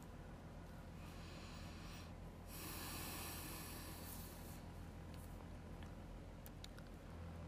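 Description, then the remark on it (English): A few slow, airy breaths in a guided breathing exercise, soft hissing inhales and exhales spaced seconds apart over a low steady background hum, with no talking. “So since there's probably a lot in your mind, and this is a heavier episode than I've had, I'm going to lead us in a breathing exercise to help clear our mind and to rest our heartbeat and to equal our breathing.”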